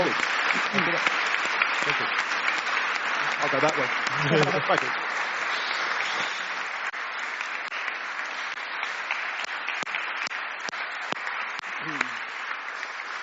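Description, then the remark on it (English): Steady, dense audience applause at an evening event, thanking a guest who made them laugh and shared their story. A broad crackle of many hands claps at an even level, and a few brief spoken thanks come through over it. “So can we just give a big round of applause to...”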